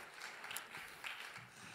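A small round of applause: a soft, steady patter of many hands clapping together, fairly quiet and even throughout, with no voices over it.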